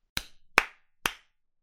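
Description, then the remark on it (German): Three sharp, fairly loud hand claps spaced about half a second apart with a little echo after each, and no talking around them. “Leute, wir klatschen nochmal. Einmal klatschen.”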